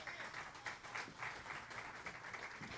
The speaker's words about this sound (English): Give our kids a round of applause.